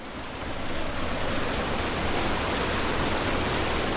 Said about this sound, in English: He also runs this local irrigation system. So when you open those head gates, the water comes over the top of that and past in there.